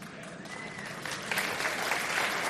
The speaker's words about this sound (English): You've drawn a lot of applause tonight.